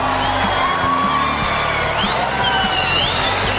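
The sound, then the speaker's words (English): A stadium crowd of 150,000 on their feet booing and chanting support for McEnroe after he was defaulted from the match, a dense, loud roar of many overlapping voices with rising shouts and whoops, sustained without a break for the whole stretch. “The crowd of 150,000 rose to their feet, booing and chanting their support for McEnroe, as McEnroe himself stood with his hands on his hips, stunned.”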